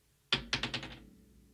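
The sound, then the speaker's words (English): Dice are rolled onto a hard table to pick a bet on a Western Carolina Catamounts game: one sharp initial hit followed by a quick run of about five lighter clacks that fade as they tumble to a stop, with no talking. “So without further ado, we roll for the second time here today.”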